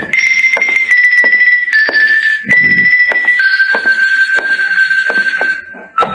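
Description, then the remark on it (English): Irregular heavy knocks thump against a door as someone demands it be opened to deliver a message, while a loud, steady high-pitched ringing tone, like an alarm or buzzer, drones continuously underneath and shifts slightly in pitch. “Come on, open up, will you? I got a message for you. Come on, answer the door.”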